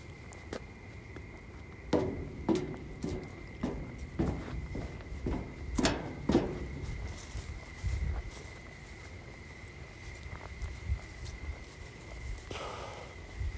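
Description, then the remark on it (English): Crickets chirp at night in a steady, high-pitched drone that runs the whole time, while a string of footsteps walking over toward them crunches over it during the first half before fading into scattered rustles. “Walk over closer by the crickets so you can hear the fucking crickets.”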